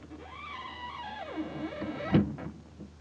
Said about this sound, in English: I've got a secret for you. Wait till I close the door.